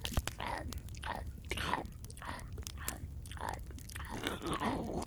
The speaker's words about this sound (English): That's the exact sound I make every time I eat something. It's totally realistic sound effects. That was amazing. Holy fuck. I ate it in one bite. Mm. Oh, I don't know why I made two bite sounds, but it went down in one bite.